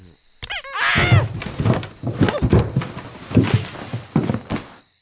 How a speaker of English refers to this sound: Okay, now's the time. I just have to get up really quietly and make sure the door doesn't squeak. And go down the steps.